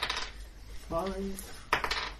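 Two eight-sided dice, rolled for a healing potion, clatter onto a hard table in a few quick, bright bursts of clicking, with a brief ringing rattle in the middle as they tumble and settle.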